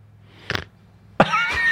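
A person imitates a snore with voice: a short rasping snort, a brief pause, then a louder, longer, gravelly snore with a whistling, nasal edge.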